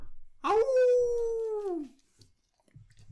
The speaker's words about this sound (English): Oh, I want to see if he can speak. Okay, you haven't taught this dog a trick ever. Make a noise. Right, say speak. Say speak. Speak. There you go.